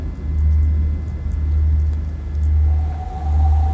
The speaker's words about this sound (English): The sky turns stormy.